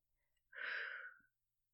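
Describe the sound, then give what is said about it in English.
A single breathy exhale beginning a slow breathing exercise, a soft airy rush that swells quickly, holds steady for just under a second, then fades out, with near silence before and after. “Exhale to begin.”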